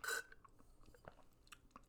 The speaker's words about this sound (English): Okay. Sorry. I just like took a sip of my green juice.